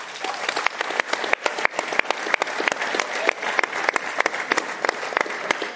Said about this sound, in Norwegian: Vi skal si tusen takk til Tydalsfestivalen igjen for at vi fikk lov til å komme hit. Det setter vi veldig stor pris på, så vi gir en applaus til dem også.